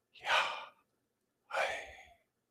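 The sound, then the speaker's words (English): Two slow, open-mouthed breaths, airy and unvoiced, the first drawn in and the second let out after a short pause, with no talking; the syllables of God's name, Yahweh, breathed with open mouth and throat. “You see, the Jews did not speak God's name, but breathed it with an open mouth and throat.”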